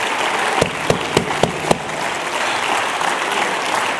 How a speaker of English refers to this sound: Come on, every dad, stand here and clap. Would you stand, every father, stand and clap your hands and say, preach it, preacher.